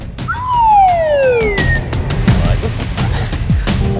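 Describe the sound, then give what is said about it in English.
A slide whistle plays one smooth, clear downward glide lasting about a second, loud and close, followed by light clattering and background noise. “Oh, it's a slide whistle.”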